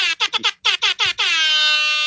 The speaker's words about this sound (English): Oh, you got the air buzzer horn thingy. Ham horn.